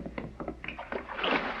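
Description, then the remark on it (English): A man jumps into the water at a pier to go after a woman who has fallen in, with a loud splash, preceded by a few quick sloshing knocks, then a broad rushing wash of water that swells and lingers. “She's fallen into the water. I'm going in after her.”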